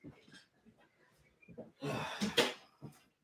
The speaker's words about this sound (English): I'm gonna close the door quickly to the studio office. Give me 1 second.